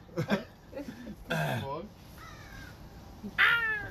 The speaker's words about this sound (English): Fucking crow's gonna come and eat your ass.